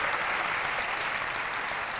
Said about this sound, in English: Let's get the parents a hand clap. Come on, let's get the parents a hand clap. Praise Jesus.